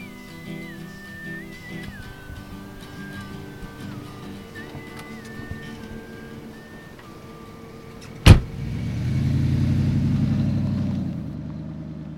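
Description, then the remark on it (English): A car engine hums steadily while someone whistles a wavering tune over it, then a single sharp door slam is followed by a swelling low engine rumble as the car, which stopped to pick up a hitchhiker, pulls off; the first to stop is war correspondent Sebastian Younger. “all of them former hitchhikers. The first to stop is”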